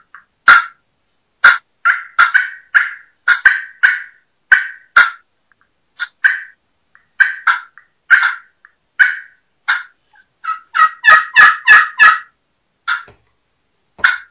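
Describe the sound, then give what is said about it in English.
Sharp turkey clucks scratched out on a pot-and-peg friction call, played alone in irregular single notes and quick bursts, with a fast run of clucks near the end. “So, let's hear you do some clucking on a friction, on a pot and peg.”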